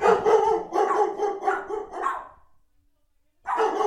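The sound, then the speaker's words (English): Dogs bark at someone knocking on the door, in frantic, overlapping bursts, loud and repeated for about two seconds, then a pause of silence before the barking erupts again. “Because if you couldn't hear my dogs barking like crazy, that's hard to imagine”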